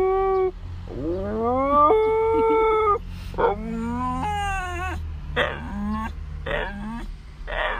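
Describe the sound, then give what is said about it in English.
A dog named Bodhi howls in a series of long, rising, wavering notes, followed by shorter yowling bursts, with a low steady hum underneath and no speech. “How do you feel about your dog friends?”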